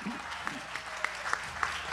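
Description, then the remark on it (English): An audience claps together in response to a reading of Psalm 47, in a steady rhythm, the sharp beats landing roughly every third of a second over a dense wash of scattered clapping and low crowd murmur. “And it begins by, oh, clap your hands, all ye people. Can we do that?”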